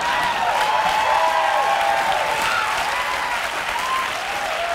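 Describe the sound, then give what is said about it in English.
A large stadium crowd at a New York Mets versus St. Louis Cardinals playoff game boos in a loud, steady roar that holds for the full length, a dense wash of many voices with faint wavering tones rising and falling through it. “I was one of the ones booing in the background.”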